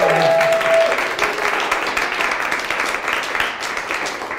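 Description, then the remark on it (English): Sustained audience applause, a dense, steady wash of many hands clapping at fairly even loudness for several seconds, with a brief tonal whistle-like note at the very start. “You can clap for them too.”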